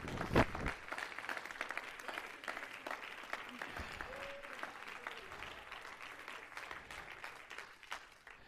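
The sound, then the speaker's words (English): An audience at Grace Church stands and claps their hands to the Lord in a dense, steady stream of overlapping claps lasting several seconds, with occasional faint voices and a brief tonal cry rising above the applause. “Everybody stand and clap your hands to the Lord.”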